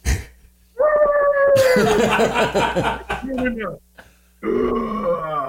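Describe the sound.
A person vocally imitates a wolf, starting with a loud sustained howling cry that slides downward, breaking into a rough, raspy growl, then a shorter growling cry after a brief pause.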